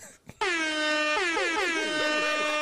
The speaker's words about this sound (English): Oh, he just spit that lyric to the air horn.